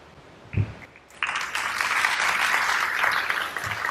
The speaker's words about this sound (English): Thank you very much. Please help me bring another round of applause for the presenters of today.